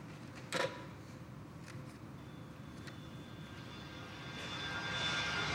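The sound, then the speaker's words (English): A steady, dense roar of an airplane engine in flight at night, not flying high enough to pressurize, low and constant, with a faint hiss building toward the end and a brief clunk near the start. No one speaks. “Are you really going to jump out of this plane?”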